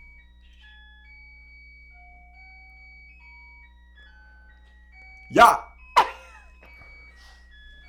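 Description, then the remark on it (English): A chiming clock that plays different tunes every hour plays a soft, steady melody of sustained bell-like notes at shifting pitches, while a person speaks two short, louder bursts near the end. “Does it play different tunes every hour?”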